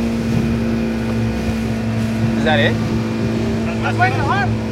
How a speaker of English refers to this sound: The boat we're in drives up to another boat and we circle around it.